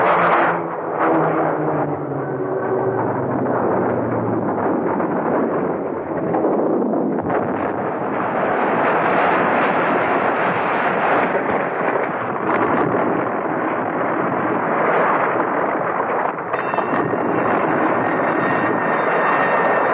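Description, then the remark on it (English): A plane going down: a loud, sustained roar of straining aircraft engines mixed with deep rumbling, steady for the whole stretch with no voices. “Look at the plane! There's something wrong! She's crashing!”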